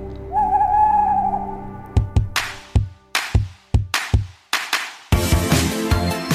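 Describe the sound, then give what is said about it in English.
A single drawn-out, wavering owl hoot opens the Great Big Owl network's audio ident, followed by a rapid series of punchy drum hits that build into a loud burst of bright jingle music. “The following podcast is a member of the Great Big Owl family.”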